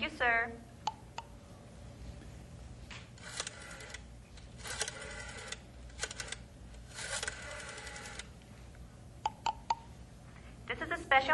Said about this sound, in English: Special operator, what number are you dialing, please? Excuse me, operator, I made a mistake. I'll try again.